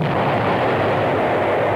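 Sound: explosion sound effect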